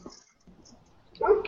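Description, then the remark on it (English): After a near-silent stretch, a dog lets out one short, fairly loud bark right at the end. “The dog barks mysteriously.”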